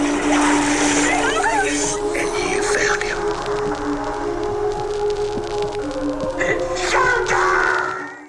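A home dishwasher runs steadily in the background, with sloshing, spraying water over a low motor hum and a few faint tonal whines, continuous and fairly loud throughout.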